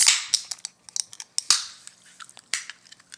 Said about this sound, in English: And grab our cans. And let's open her up.